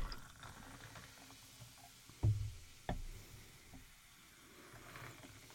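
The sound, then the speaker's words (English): A cocktail is poured into a glass, a soft continuous liquid trickle with two sharp clinks or knocks partway through. It sounds fairly quiet, with no one speaking. “Just pour the cocktail.”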